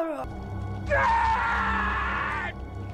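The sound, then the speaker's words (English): A voice imitates a film character's drawn-out, anguished scream, rising in pitch and held loud for about a second and a half before cutting off, over a low steady background hum. “And John pulls her off out of the thing, and she dies in his arms. and he just screams this like weird like.”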